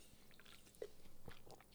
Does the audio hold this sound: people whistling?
no